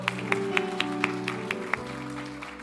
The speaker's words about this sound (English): It's a good word. I'm going to clap for myself right there.